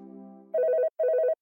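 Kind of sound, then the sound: signal or alarm, phone ringing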